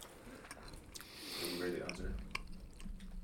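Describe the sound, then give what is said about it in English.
Chewing of a thin, crisp seaweed snack, with soft crackly crunches and wet mouth sounds repeating irregularly over a few seconds. “Something quick, something you just hold and eat. Mm-hmm. Yeah, this tastes seaweed that much.”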